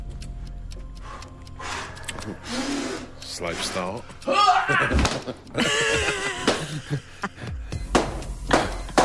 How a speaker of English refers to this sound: Oh, picking up now. Pointy shoes, mate. So it was stomping. Were you stomping? Nice. Really rapid.